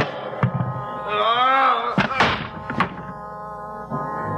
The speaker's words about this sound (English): Behind me, I felt a large, cold handle. The door to the meat storage room. I heaved it open.